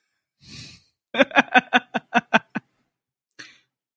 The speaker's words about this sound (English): It smells good. This is the play-by-play. She is popping the cork. She's sniffing it.